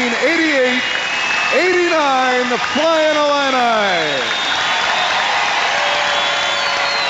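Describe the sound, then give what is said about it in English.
A large arena crowd of around 6,000 applauds and cheers in a steady, loud wash of clapping for former Flying Illini basketball player Kenny Battle, while an announcer's amplified voice booms over it for the first few seconds. “Let's have a big round of applause for your”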